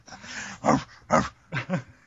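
A dog barks four times in short, uneven bursts, the last two coming close together; the barks are clear, with no one talking.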